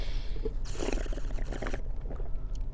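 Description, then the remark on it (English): Someone sips a Pepsi right up against the mic: a slurpy, gurgling pull lasting about a second with a fizzy hiss, followed by softer wet swallowing sounds. No one talks. “Yeah, take a sip with it.”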